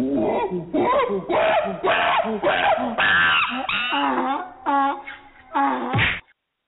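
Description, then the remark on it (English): A loud, comedic sound effect of rapid cartoon punches and whacks, about eight hits in quick rhythm, mixed with wailing, bray-like cries, ending abruptly after a final thump. “This deserves the first Super Donkey Punch of the year.”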